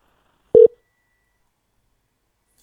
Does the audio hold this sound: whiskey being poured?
no